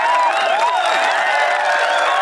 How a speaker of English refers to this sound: Your applause.